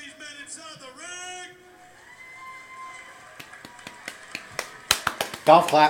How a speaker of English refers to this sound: Golf clap.